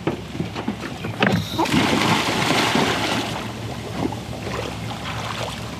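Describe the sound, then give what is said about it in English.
A buoy with a tape attached is dropped over the side of a boat into the water before a dive on a grey autumn day in Otago, hitting the water with a brief splash, followed by steady rushing water and wind noise around the hull; no one speaks. “after she drops the buoy with the tape over the side”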